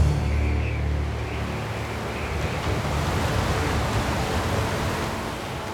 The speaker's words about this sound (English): The winds cut through the Red Sea, forming a corridor of dry land.